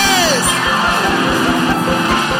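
An audience shouts praise to the Lord, a loud, sustained wash of yells and whoops from many voices over a steady, rapid rhythmic pulse.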